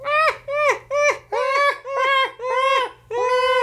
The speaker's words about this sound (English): I mean, that was a seagull, but those guys are always laughing at you. If you don't think seagulls are laughing at you, they are.